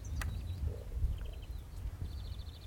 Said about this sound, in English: We're interrupting this show for a recording live of a skylark. That's good, isn't it?